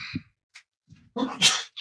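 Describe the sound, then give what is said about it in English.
A single sneeze bursts out, preceded by a short inhale and a couple of faint breathy sounds, loud and abrupt at the end. “God bless you.”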